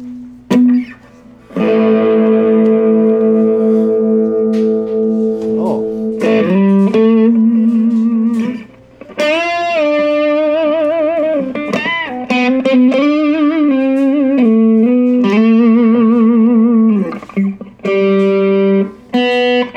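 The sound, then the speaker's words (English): An electric guitar played through an amp set to its crunch mode (the amp has clean, crunch and brown modes), with gritty, mildly distorted tone: a sustained chord, then a series of bent single notes and short melodic phrases, loud and without any talking. “Let's switch it up and go to as three modes as a clean, a crunch, and a brown. Okay, so this is the crunchy.”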